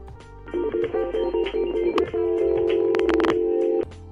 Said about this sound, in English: Oh my, I have a phone call.